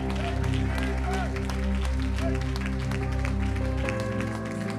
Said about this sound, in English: Got a hand clap of praise all around the room.